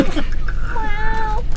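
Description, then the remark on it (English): A single drawn-out cat meow, tonal and slightly plaintive, holding steady before trailing off over a low background rumble. “Meow.”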